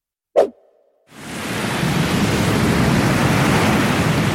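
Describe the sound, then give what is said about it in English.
A single sharp thud, then a loud, steady roar of wind and crashing surf swells in and keeps blowing: a terrible storm at sea battering a ship, with no voices. “But no sooner is he out to sea than God sends a terrible storm to trouble the boat.”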